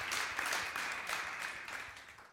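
A round of applause from a crowd, a dense, steady patter of many hands clapping at once that holds for a couple of seconds before tapering off at the end.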